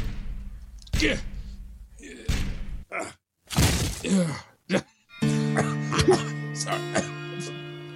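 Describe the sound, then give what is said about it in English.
A locked door is forced open with a few heavy, irregular thumps and a splintering crash, mixed with grunts and coughs of effort, then a loud sustained musical chord swells in. “Help me break in the door.”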